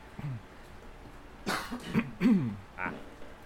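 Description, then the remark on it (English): A person coughs a few times in quick succession, fairly loud, with a throaty, slightly voiced rasp and short gaps between bursts. “I too coughed.”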